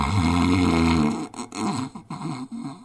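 A sleeping person snores: one long, loud, raspy low drone for about a second, followed by a string of shorter, uneven snorts and rumbling breaths.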